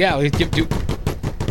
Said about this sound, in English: We need a drum roll?